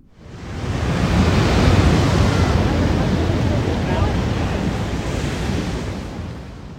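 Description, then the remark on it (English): Steady, full-bodied ocean surf roars continuously, a broad rushing wash of waves that swells up quickly at the start and holds loud throughout, with no voices. “Thank you for listening, and cue the ocean.”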